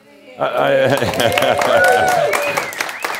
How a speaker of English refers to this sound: You cheer and applaud now, but by the end of the day, some of you may be wanting to go back.